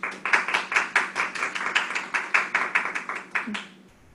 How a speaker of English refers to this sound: Can you please give him a round of applause?